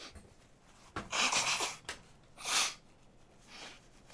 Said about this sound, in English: So, I need to blow my nose first.